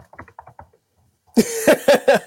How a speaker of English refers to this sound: That's him typing right now. We can hear the sound of him.